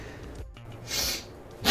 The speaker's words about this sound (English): Sorry, that was for a sniff.